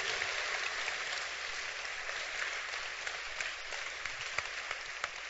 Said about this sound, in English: Clap your hands for Jesus if you can.